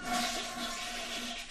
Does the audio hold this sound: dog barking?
no